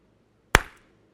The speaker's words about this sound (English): What was the cause of that noise? My hands slapping together, right?